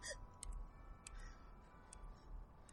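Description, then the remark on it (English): Outdoors near a clock tower, its mechanism gives off faint, evenly spaced ticks, roughly one every second or so, over a low steady hum with no voices. “Near a clock tower, apparently.”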